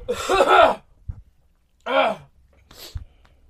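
A person who was sick the week before coughs and clears their sore throat in a few rough, throaty bursts separated by short pauses, with no talking.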